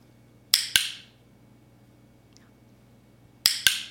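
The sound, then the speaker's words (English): A dog training clicker, used to tell a dog it has done a good job, clicks twice in quick succession, then after a pause of about three seconds gives another sharp double click. The snaps are bright and crisp over a faint low hum. “That was the sound of a clicker.”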